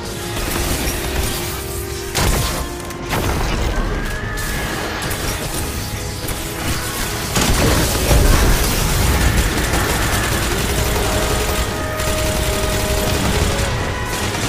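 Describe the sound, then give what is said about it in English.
A party cannon goes off amid a dense, loud barrage of booming blasts and crashing impacts that keeps rolling for the whole stretch, with a heavier surge of explosions partway through. No one speaks. “I'm gonna have a last party cannon.”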